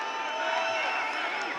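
A large concert crowd chants "Let Jeff Sing" together, a dense, steady roar of many voices filling the space at a fairly loud level throughout the short stretch, with no single voice standing out.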